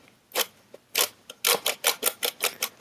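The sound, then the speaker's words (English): Parmesan grated against a grater in about ten short, raspy, crunchy strokes, a few spaced apart and then a quicker, steady back-and-forth rhythm, with no voices. “I can hear a little crunchy sound there.”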